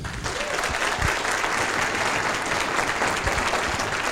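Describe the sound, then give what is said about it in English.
A crowd at an evening event at the Hurlingham Club applauds steadily, a dense wash of many hands clapping at an even, fairly loud level throughout, with no voices standing out. “You better hold the applause in case I don't deserve it.”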